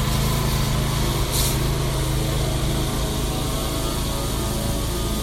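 A gas-powered string trimmer, worked by a man edging grass, its small engine holding a loud, steady buzzing whine without letup for the whole stretch, with no voices.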